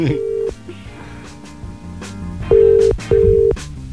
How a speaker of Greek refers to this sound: Τον πάρω τηλέφωνο, κάτσε τον πάρω τηλέφωνο.